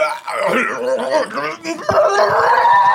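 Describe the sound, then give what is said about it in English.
A person imitates a dog's howl with drawn-out, wavering, fairly loud vocal tones, pausing briefly partway through before holding one long, steady howl to the end. “And he howls.”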